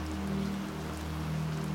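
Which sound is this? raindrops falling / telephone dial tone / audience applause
raindrops falling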